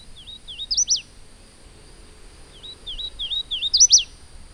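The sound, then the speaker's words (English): A male hooded warbler, flitting through the branches overhead, sings two clear, whistled phrases to his mate, each a quick run of slurred notes ending in an emphatic rising flourish, against a quiet background. “A male hooded warbler with his bright yellow mask and black cap and throat flitting through the branches above our heads as he calls out to his mate.”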